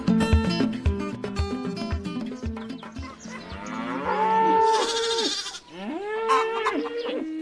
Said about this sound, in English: where on earth are we having a meeting at a cattle farm?